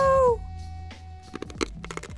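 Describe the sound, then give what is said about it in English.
A brief high tonal cry opens, then a quiet stretch gives way to a run of sharp, irregular crackling crunches as a man chews and breaks glass from a broken light bulb between his teeth. “He's crunching it.”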